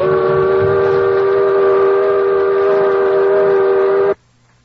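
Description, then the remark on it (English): A loud steamboat whistle blows in one long, steady, harmonic blast lasting about four seconds, then cuts off abruptly, leaving only a faint low hum. “It was only then that I had the sense to go sound the wretched steam whistle.”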